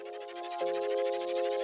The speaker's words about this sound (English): Oh, no. Is that an echo?